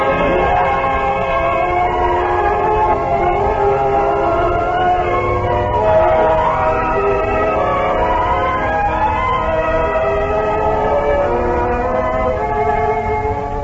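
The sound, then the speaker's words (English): A train rolls along steadily, its loud, continuous rumble layered with sustained droning tones, unbroken for the whole stretch with no voices. “I'd like to put myself in the position of one of the characters and go back to a moment when I met a man on a train”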